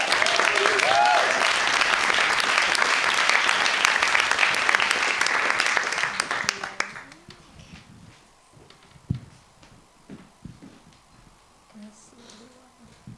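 A crowd claps loudly and steadily for about seven seconds, a dense wash of applause that quickly fades out, leaving faint murmurs and scattered small noises afterward.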